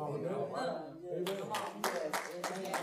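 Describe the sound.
A run of sharp hand claps begins partway in, about six crisp bursts in a quick, uneven rhythm, sounding over a voice that talks steadily throughout.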